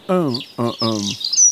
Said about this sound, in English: And this is the wood pigeon. They're both intensely annoying. They're very similar, but that's the one I meant.